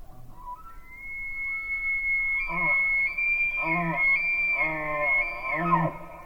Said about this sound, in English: And it was just an elk bugling and it like bounced off of the cliff face.